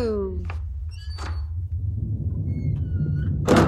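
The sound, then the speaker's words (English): A second door, door number two, is opened with a few scraping thunks and a thin, drawn-out squeak, ending in a louder clatter, all over a steady low rumble. “And what could be behind door number two?”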